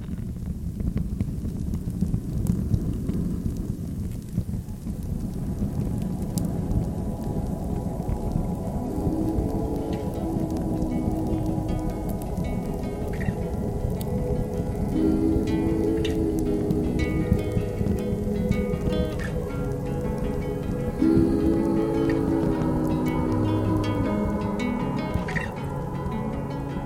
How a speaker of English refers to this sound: I light the fire and settle down beside it.